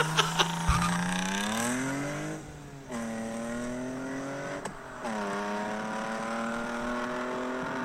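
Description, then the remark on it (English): A BMW 318ti compact car's engine revs hard and climbs in pitch, dropping briefly at two gear changes before pulling up again. It is loud, with no voices. “This is one of the best sounding cars I've ever heard. It's going to be his compact.”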